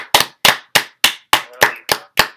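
Eight loud, sharp hand claps in a steady, even rhythm, about three per second, with no voices in between.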